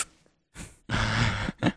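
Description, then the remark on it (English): A voice imitates powerlifters bracing as if going in for a set during a stretching breathing exercise: a quick breathy intake, then a long, strained, breathy hold with a faint voiced edge, ending in a short puff of breath. Fairly loud, with no talking. “all my power lifters that stretch with me, whenever I have them do their like breathing activities, they'll actually hold their breath like they're going in for a set.”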